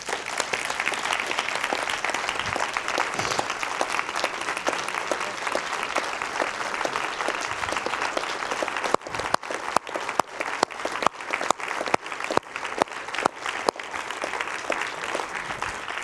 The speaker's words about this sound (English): This day today is for all the men and women that have died serving our country. I believe that deserves a hand clap. Yeah.